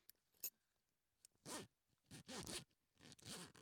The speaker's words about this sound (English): Okay, there we go. Just gonna zip up this giant suitcase.